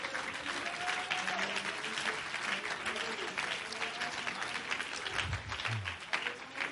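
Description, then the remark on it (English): An audience claps steadily for the whole stretch, a dense, even wash of many hands at full strength, with a few raised voices calling out underneath the applause. “Somebody clap right now.”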